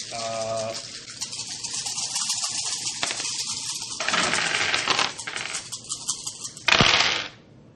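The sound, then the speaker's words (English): A handful of dice rattle and clatter across a hard tabletop, a dense stream of sharp clicks lasting several seconds, ending in one louder burst of tumbling. “I'll roll 10, you roll for your team.”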